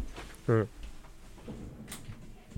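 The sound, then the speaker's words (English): A door shuts with a short, loud creaking squeal, followed moments later by a faint metallic click as it is locked, while quiet speech murmurs in the background. “I'm going to lock the door so nobody comes busting in because there's like three kids here now.”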